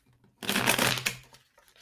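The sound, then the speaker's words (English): A deck of cards being shuffled, a quick rippling riffle of about a second that starts abruptly and fades, with no talking. “Shuffle the cards.”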